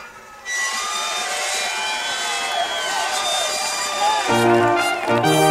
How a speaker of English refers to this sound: Oh, the train's stopping.